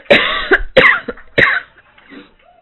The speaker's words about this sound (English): Oh, that's a nasty cough.